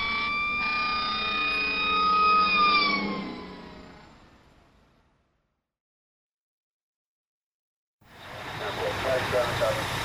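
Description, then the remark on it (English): Emergency vehicle sirens wail loudly and steadily for a few seconds, then fade away into silence before a burst of busy, noisy activity starts up. “What's that? Sirens?”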